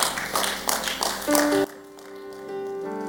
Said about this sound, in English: The way you are clapping, why?